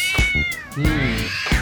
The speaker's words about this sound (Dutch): Oh, er komt net een katje. De poes komt meteen ook op tafel.